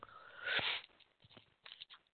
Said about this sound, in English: I'm going to put a cough drop in my mouth because I woke up with a sore throat.